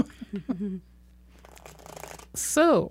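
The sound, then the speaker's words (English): Papery riffling of a deck of tarot cards being shuffled for a reading, a soft scratchy flutter in the middle, with brief bits of a voice before and after. “So I am shuffling tarot cards so that Marisol gets another reading.”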